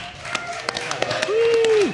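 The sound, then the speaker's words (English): An audience applauds the comedians with scattered, uneven claps rather than a dense roar. A single cheering voice holds a steady mid-pitched note in the last half second before dropping off. “Well, let's give our comedians another round of applause, everybody.”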